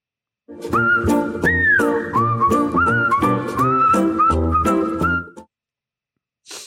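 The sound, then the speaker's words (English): A bright whistled melody, the WTF intro music, plays over a bouncy instrumental backing for about five seconds, loud, then cuts off abruptly into silence. “So we might as well rip the Band-Aid off and play our glorious music in that wonderful, wonderful WTF intro.”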